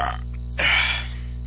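A single short burp erupts abruptly about halfway through, loud, with a raspy, low gurgling quality over a steady background hum; no one speaks.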